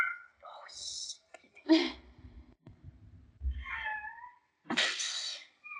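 A cat meows several times up close, a few drawn-out, wavering cries separated by short pauses, with some soft rustling and low thumps in between.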